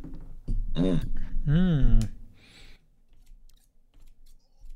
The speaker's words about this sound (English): I am cutting my ramen with scissors. Do you ever cut your ramen with scissors so that when you scoop it, it's like not long and stringy?